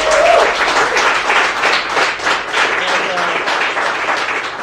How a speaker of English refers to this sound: Anyway, a round of applause for